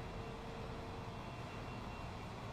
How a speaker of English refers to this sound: This okay, let's ask Twitch. Can y'all hear that vacuum in the background?